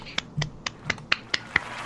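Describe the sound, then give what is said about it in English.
An applause sound effect played by clicking an applause button: a short run of about seven sharp, crisp claps at uneven intervals, each a quick bright crack, fairly light rather than a full crowd. “Let's give him the applause button.”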